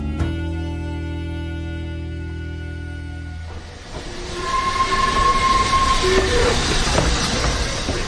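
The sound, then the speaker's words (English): An electric train's deep, steady mechanical drone gives way to a broad rumbling wash with thin high squeals, like wheels and brakes, as it pulls into Krakow's central station in Poland and draws to a stop, continuous. “The train let off a blast of steam and slowly ground to a halt.”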